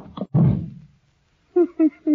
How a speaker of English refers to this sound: You shouldn't have slammed the door, Crane. You'll make him mad.